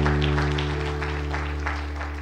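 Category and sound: crowd, audience clapping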